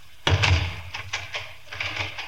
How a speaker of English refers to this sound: You may leave the room and lock the door.